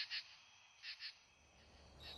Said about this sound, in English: Then in September, there are the katydids. A much softer, synchronous, echoing sound.